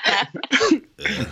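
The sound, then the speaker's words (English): A voice produces a few deliberately forced, staged coughs in quick succession, fairly loud, with brief gaps between the harsh bursts and no other talking. “Fake cough.”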